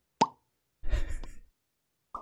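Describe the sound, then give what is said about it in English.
A man makes mouth popping sounds: a sharp pop, then a short burst of lip and mouth noises, then another quick pop. Crisp and fairly loud with silence between. “And then he just starts popping his mouth and like whistling and making noise.”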